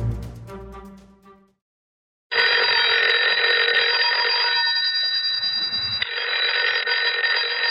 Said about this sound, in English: Oh, the phone. In the middle of the night.